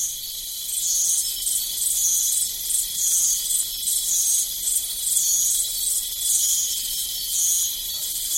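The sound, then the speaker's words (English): A dense, continuous chorus of crickets chirping at night near the foot of Mount Basavi in Papua New Guinea, high-pitched and pulsing in a steady rhythm, with no voices, filling the whole stretch at an even, moderate loudness. “Before we go, a few more crickets, some frogs, and other various nocturnal creatures that live near the foot of Mount Basavi in Papua New Guinea.”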